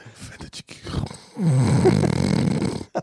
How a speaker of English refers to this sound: He'll stop breathing heavy.